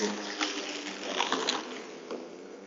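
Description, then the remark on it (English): A battery-powered lawn mower mows a backyard lawn under dark clouds, running with a steady electric whir and rushing blade noise that swells and dips slightly, with no voices over it. “Perhaps I shall mow on until the battery runs out.”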